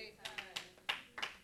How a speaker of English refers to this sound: Right. See, y'all, I got like a full couple claps in here.